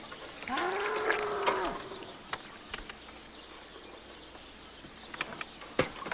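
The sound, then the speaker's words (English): A bull lets out a single loud, drawn-out bellow lasting just over a second, then quiet background noise with a few scattered sharp clicks and knocks follows. “We don't have a cow. We have a bull.”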